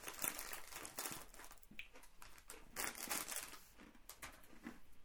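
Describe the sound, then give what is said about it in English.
A hand grabs a handful of snacks from a crinkly snack bag, producing a continuous burst of rustling, crackling packaging noise with irregular crunchy spikes throughout, loud and unbroken by speech. “Okay, I'm going to quickly grab a handful as well so that I can, my face can burn more.”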